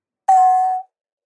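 A single synthesized bell tone, made by frequency-shifting a voice so the frequencies lose their whole-number ratios, strikes sharply and rings for about half a second with a bright, metallic, slightly clashing inharmonic timbre, then cuts off quickly. No talking.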